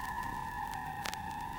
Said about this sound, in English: That sounds like old sci-fi or something. Vinyl crackle plus this. Sounds like a siren.